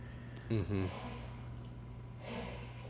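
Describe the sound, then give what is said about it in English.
A man, the speaker's father, coughs twice in quick succession from another room, muffled, followed by a softer, breathy cough-like sound a moment later over a low background hum. “Oh, that's just Dad in another room. Coughing with lung.”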